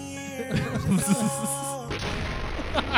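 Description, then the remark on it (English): A cinematic explosion sound effect: a rising tonal, whooshing buildup gives way to a loud, broad roaring blast that rumbles on to the end, with no talking. “So dude, that explosion fucking effect is so I know.”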